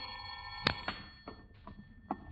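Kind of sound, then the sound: household object, telephone bell ringing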